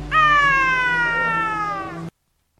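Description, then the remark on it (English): A single loud, drawn-out yowl from a Tonkinese cat whose tail is caught in a closing window, strained and wailing, sliding slightly downward in pitch for about two seconds before cutting off abruptly into silence. No one speaks. “She sounded like a window closing on a Tonkinese cat's tail.”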